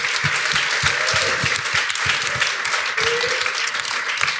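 A crowd applauds steadily, many hands clapping in a dense, even roar of claps with a few sharper individual claps standing out, sustained at a fairly loud level throughout.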